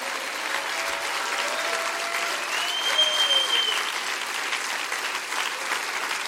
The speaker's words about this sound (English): Let's all stand to our feet and clap our hand real big and say, thank you, Lord. Come on, thank you, Lord. Clap your hands real big.